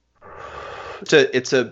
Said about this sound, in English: What's that noise? I'm sorry, I'm just having a little trouble breathing right now. Oh, you may have the virus.